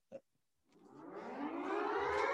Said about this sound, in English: Right, let's just hit the siren.